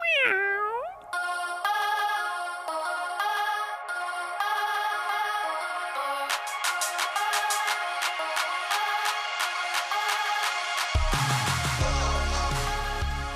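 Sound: cat meowing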